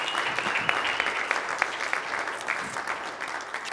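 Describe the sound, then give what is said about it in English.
An audience claps steadily to welcome two people coming down to help with a skit, a dense patter of many hands forming a continuous, even wash of applause with scattered sharper claps standing out, sustained at a moderate level throughout. “Can we give them a round of applause as they come?”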